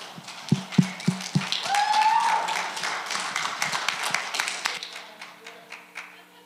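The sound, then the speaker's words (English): An audience welcomes a pastor with enthusiastic applause, many hands clapping at once in a dense, steady patter, with a whistle and scattered cheers rising above it before the clapping gradually thins out. “They don't clap for me at my church, and so don't worry about that.”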